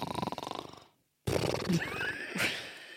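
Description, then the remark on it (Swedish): A voice imitates their own snore: a raspy, rattling inhale, a brief pause, then a louder, wheezy, snorting burst with squeaky whinny-like tones, fairly loud. “Men det kan låta som en snark. Så här var det på mitt snark, så var jag så här.”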